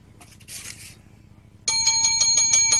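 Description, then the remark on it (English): A bell rings loudly and continuously with a rapid, rattling trill, starting suddenly after a brief soft rustle and carrying on to the end with no voices. “I love that bell.”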